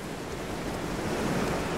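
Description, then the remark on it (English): Ocean surf washes steadily onto a beach, a continuous broad roar of breaking water with a slight swell toward the end, with some wind mixed in and no voices. “Cut to Anton and ungainly Vincent running on the beach toward the ocean.”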